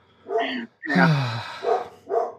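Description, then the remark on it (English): Several dogs bark and yip in a quick burst at a UPS delivery driver arriving at the door, four loud barks in about two seconds, one drawn-out and howling, with no talking. “The UPS man is greeted by a carol of dogs.”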